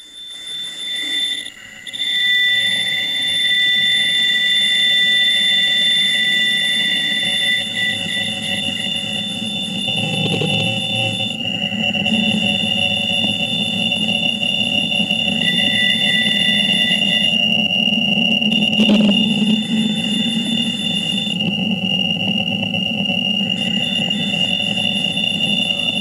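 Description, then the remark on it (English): Steady electronic static with sustained high-pitched tones running throughout, a low rumbling hiss underneath and a brief click near the middle: a radio telescope recording of the Wow signal. “So this is the wow signal.”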